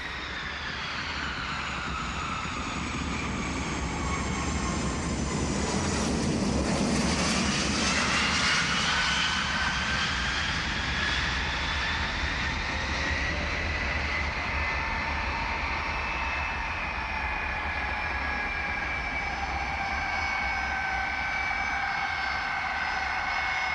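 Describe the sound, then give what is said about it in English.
A loud, steady airplane engine roar with shifting whining tones, swelling briefly in a rumbling burst before settling into a continuous drone, as a plane lands at John F. Kennedy Airport and taxis to where passengers get off. No voices. “When the plane landed at John F. Kennedy Airport and taxied over to where you got off the plane, the doors opened and everyone just started getting off, and we kind of just milled in with the crowd getting off the plane.”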